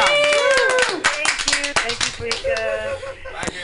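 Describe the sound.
A small group claps in a loose, irregular burst of sharp hand slaps, mixed with voices cheering and talking over the applause for its whole length.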